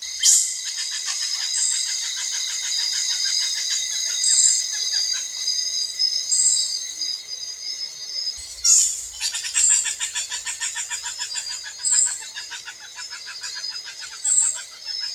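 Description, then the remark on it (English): A Rondo dwarf bush baby up in the tree canopy calling in a steady stream of rapid, high-pitched, bird-like chirps and trills, moderately loud, with a brief break partway through and no voices. “here's an example of a Rondo dwarf bush baby call that was contributed by Andrew Perkins”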